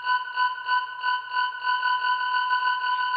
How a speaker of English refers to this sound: The beeping steadily increases in volume and tempo.